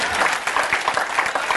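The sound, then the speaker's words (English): An audience claps their hands in a steady, dense burst of applause, many overlapping claps forming a continuous crackling wash with a faint rhythmic pulse and no voices. “Somebody better clap their hands like you know what I'm talking about.”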